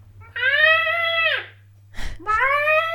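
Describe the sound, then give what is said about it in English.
A voice imitates the scream a baby girl makes when she puts things in her mouth, an informational rather than upset scream: a loud, sustained, high-pitched squeal, a short breathy gasp, then a second scream that continues to the end. “And then she went on from squeaking to, she likes to put things in her mouth and scream. And it's sort of this noise.”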